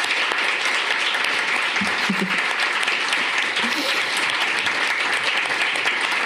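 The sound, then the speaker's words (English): An audience applauds author Evie Wyld, winner of the 2021 Stella Prize, at the end of an evening conversation event: a dense, even wash of clapping that holds at a consistent loudness throughout, with a few faint voices briefly audible beneath it. “Please give Evie another round of applause.”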